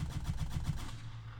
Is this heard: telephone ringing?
no